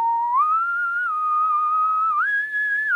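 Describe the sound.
A clear whistled melody from a movie score, sustained, sliding notes stepping up and down in an eerie, theme-like tune, carried alone with no talking for about three seconds.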